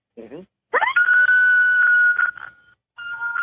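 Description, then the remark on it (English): An imitated lone coyote howl: a brief rising yelp, then a long sweep up into a steady high wailing note that holds for over a second, followed by a shorter second wail. “You know, the number one thing a coyote would respond to is single lone howl.”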